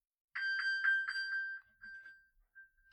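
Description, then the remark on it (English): A phone's find-me ping, triggered by pressing a button on a smartwatch (an iWatch): a quick run of bright electronic chirps that settles into a few fainter, sustained beeps, with no voices. “Press that on my watch, I can find my phone.”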